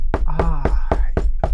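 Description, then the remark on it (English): Six loud, evenly spaced knocks on a door, each a sharp, heavy thud arriving about four times a second, with a faint murmur of voice between some of the blows. “Wait, I can hear her knocking.”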